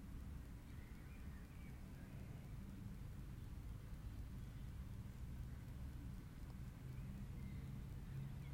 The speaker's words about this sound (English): And we're meditating on the sound of the tractor cutting the grass.